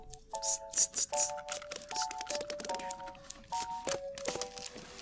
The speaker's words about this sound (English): Oh, here's the instrumental part with like the scissors and the staplers and the, like scotch tape.